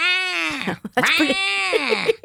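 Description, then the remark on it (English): A peacock roaming by lunch tables screeches twice, loud and piercing: a drawn-out wailing cry, then a longer one that bends upward before breaking into short, stuttering honks at the end. “It sounds like they're in pain, but that's the way they screech.”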